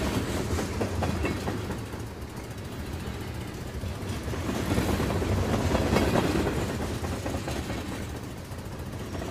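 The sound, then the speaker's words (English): A train rolls past on railway tracks, a steady heavy rumble with rhythmic clickety-clack of wheels, swelling louder midway and easing slightly toward the end. No voices. “When the train passed, he was gone.”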